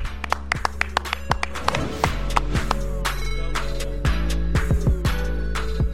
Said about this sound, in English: Clap it up.